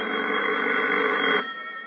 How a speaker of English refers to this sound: That is, until I reached my hotel room and found my phone ringing.